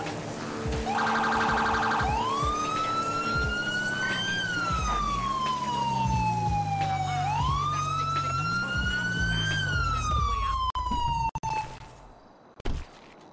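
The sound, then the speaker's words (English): A highway police car siren wails loudly in slow rising and falling sweeps over a low traffic rumble, then cuts off near the end. “Highway cop car.”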